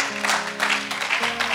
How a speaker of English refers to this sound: Have you welcomed him? Yes, clap for him.